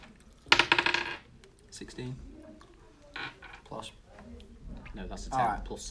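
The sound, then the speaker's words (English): A fairly loud clatter of dice rolled across a tabletop for a perception check, a rapid burst of sharp clicks settling within half a second, followed by quieter shuffling and faint voices. “Practice, roll perception check for me, will you? Oh, okay. I'll probably get the right dice.”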